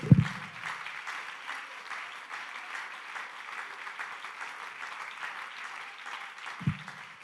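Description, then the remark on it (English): A crowd claps continuously for several seconds during a sermon, a dense, steady patter of many hands, with a couple of low thumps at the start and near the end. “Clap your hands and love him.”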